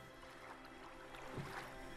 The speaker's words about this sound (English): As the boys row across the pool, the splash of their oars echoes off of the houses.